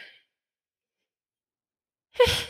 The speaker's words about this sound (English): I have to sneeze. I apologize. I have to sneeze and it's going to be loud.